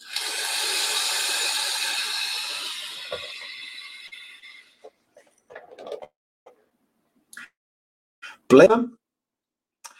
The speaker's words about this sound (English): Yeah, Profile Unity is quieter, not so loud as this one. This is just because the air goes through these three holes. I think that's just making this weird kind of bit whistling sound.